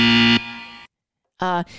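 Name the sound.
buzzer sound effect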